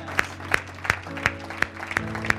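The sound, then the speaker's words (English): An audience claps in a steady, even rhythm, about seven sharp claps in two and a half seconds, over sustained low musical tones, with no voices, as people step out of their seats to come to the altar. “Give them a round of applause as they come.”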